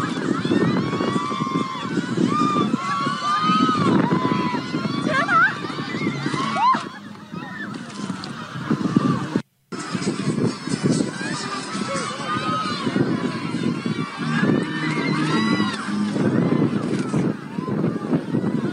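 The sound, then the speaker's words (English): Strong wind roars and buffets steadily for the whole stretch, loud, with a brief drop-out midway and faint higher squeaks and murmurs riding over the rumble. “The wind just blowing and gusting.”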